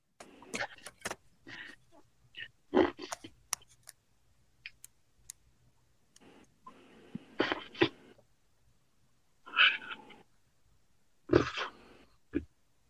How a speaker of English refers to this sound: I'm getting heavy breathing. Is it? It must be a drink of some kind, right? I mean, we know it's being slurped.